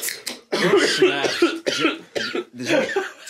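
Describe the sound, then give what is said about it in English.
A man coughs hard and repeatedly, in several loud, raspy fits, with brief gasps between the harsh bursts. “This man is coughing up a lung.”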